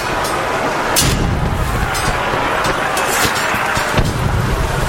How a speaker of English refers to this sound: That's a cannon. It sounds like swashbuckling is going on in the background.